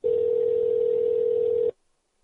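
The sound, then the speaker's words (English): A single steady telephone ring tone, the kind a caller hears while waiting, sounds loud and clear for under two seconds as a dropped call is being placed again, then cuts off into silence. No voices. “If she doesn't answer, then I'll just have to give my conclusion and we'll end it.”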